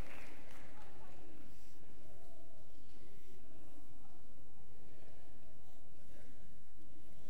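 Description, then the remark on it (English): A crowd applauds steadily for several seconds, a dense crackle of many hands clapping at once that stays fairly even in loudness throughout, with no clear voices over it. “Give everyone a round of applause there.”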